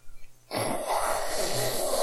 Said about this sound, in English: Do you need to blow your nose? You need to blow your nose.